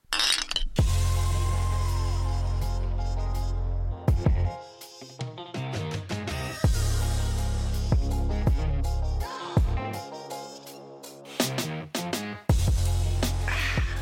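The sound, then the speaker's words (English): Glasses clink together repeatedly in a bright toast, sharp ringing taps scattered irregularly over a steady low drone, with no voices present. “Here's to y'all. Here's to possible breakthroughs and possible breakups. The circle of life. All right. Cheers. Cheers.”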